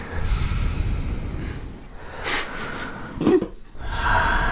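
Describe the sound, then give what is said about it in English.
A person imitates an old man's heavy breathing: a few loud, rasping inhales and exhales with a snorting, nasal edge, performed alone with no talking. “I did have an old man sitting next to me that breathed like this the whole time.”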